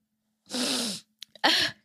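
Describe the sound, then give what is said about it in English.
Two sneezes in quick succession, loud, each a sharp, noisy burst with a faint sniffle between them. No one speaks. “Look at you all snot-nosed over there.”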